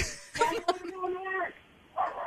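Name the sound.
dogs barking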